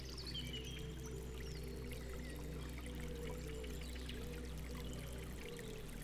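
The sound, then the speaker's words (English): A small stream babbles steadily, its water flowing in a continuous rush with bright, sparkling trickles on top and a low, even rumble underneath. No voices are present. “Leaving the forest canopy, the raindrop found itself on the edge of a small, babbling stream.”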